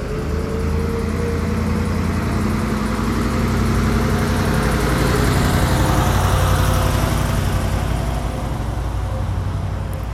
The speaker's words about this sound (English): Also, sorry, there's like a big truck coming by. That's gonna be hard on the ears. Maybe lower the volume.